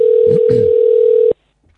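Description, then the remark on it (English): A steady electronic ringing tone from an outgoing phone call to the Georgia Louise Atelier, made to book a facial, holds for just over a second, then cuts off abruptly. Faint voices murmur underneath it. “She won't answer the phone. She's too important.”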